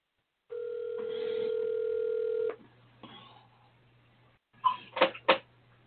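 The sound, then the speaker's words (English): An outgoing phone call on the line: a steady telephone tone holds for about two seconds, then faint line hiss and a quick cluster of sharp clicks and beeps, with no one answering. “Let me see if his butt answers the phone.”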